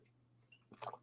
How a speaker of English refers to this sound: I'm going to take a sip of my water.